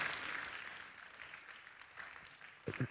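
An audience claps steadily, a dense crackle of many hands lasting about three seconds, with a couple of louder bursts near the end.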